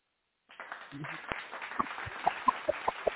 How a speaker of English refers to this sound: We're going ahead and throw some claps on it.